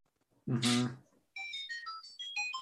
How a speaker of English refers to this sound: And that was like perfect timing. Who the hell played the Zeldas now? Oh, that's my ring. That's my ringtone.